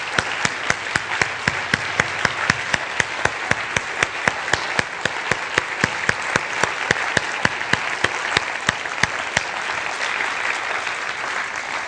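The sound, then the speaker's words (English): A large gathering claps together in a dense, sustained round of applause as a clap offering of praise to God, with sharp individual claps standing out, holding steady at a fairly loud level for about twelve seconds with no talking. “How about, you know, in the Bible it talks giving a clap offering of praise to God.”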